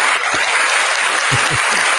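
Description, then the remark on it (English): A loud burst of applause from a crowd: dense, continuous clapping that fills the whole stretch, with a few heavier individual claps standing out near the end. No one speaks. “That was big clap.”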